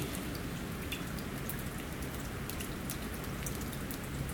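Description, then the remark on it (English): Steady patter of melting ice dripping, many small irregular drops tapping continuously over a soft constant wash of water noise, with no voices. “You can hear the water melting.”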